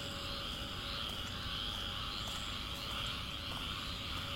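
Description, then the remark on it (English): A steady, dense chorus of tree frogs in the trees and undergrowth, maybe a dozen yards away, trilling continuously at the start of a morning walk, forming a constant high-pitched wash over low rumbling background noise, with no speech. “This morning's 10-minute walk starts with a chorus of tree frogs.”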